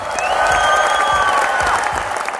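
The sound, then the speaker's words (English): Steady applause of many hands clapping at once, a dense, even patter that holds loud throughout, with a faint whistle-like tone and crowd murmur woven in. “I swear, I need to clap for us.”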